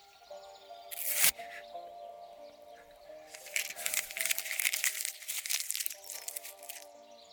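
A sharp burst of paper crackling, then a longer stretch of busy crumpling and crinkling as a sheet of paper with a poem on it is balled up and thrown on the ground, with a faint steady hum underneath.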